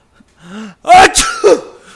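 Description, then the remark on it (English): A person fakes a sneeze with their voice: a rising drawn-in breath, then a sharp, loud explosive burst and a quick second catch, with no other talk. “It's hard to do a fake sneeze while not saying achoo.”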